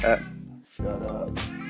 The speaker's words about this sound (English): The cat in the background.